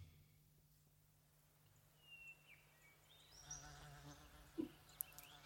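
A bee buzzes steadily and low throughout the start of a song, a continuous droning hum, joined midway by faint rising tones and a few soft clicks as the music begins to creep in.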